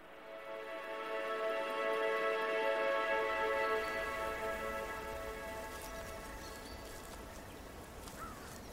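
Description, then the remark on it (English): Steady rain falls in a dense, hissing wash that swells slightly and then holds, with sustained tonal drones layered over it and no voices. “And they didn't plan for the rain.”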